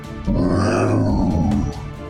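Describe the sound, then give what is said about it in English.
A person voices a deep, rumbling groan in imitation of a creaking tree, one sustained low moan lasting over a second that swells quickly and then fades. “Okay, as you turn back and shout that, the tree makes a low groaning sound.”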